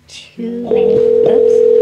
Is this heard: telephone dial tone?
yes